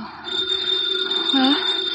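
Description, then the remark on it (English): A house telephone rings with a steady, high, metallic bell tone that holds through the whole two seconds, fairly loud against a faint background hiss. “The phone is ringing.”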